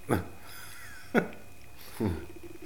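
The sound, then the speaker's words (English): A dachshund lets out three short, sharp barks about a second apart, with a soft whimpering tone between them. “We have a sausage dog that can actually be fed.”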